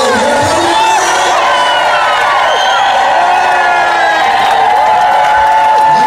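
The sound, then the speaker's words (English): A large crowd cheers and shouts in welcome as a group on an Honor Flight San Diego trip walks down off an escalator into it, a loud, continuous roar of many overlapping voices with whoops and rising calls, sustained without pause for several seconds. “And as we walked down off the escalator into the crowd, they were welling up and there was tears.”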